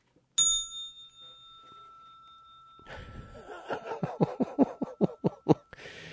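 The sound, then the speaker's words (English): A single bright bell strike rings out clearly and sustains, fading over a couple of seconds. It is followed by a quick series of rhythmic tapping or clattering bursts. “But it would be that crystal clear bell sound that you'd hear, and goosebumps,”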